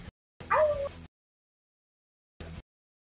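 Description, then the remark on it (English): A person lets out a short, loud, yelping battle cry that sounds like a dog, followed by silence and a brief quieter sound at the end. “No, that was me doing his battle cry.”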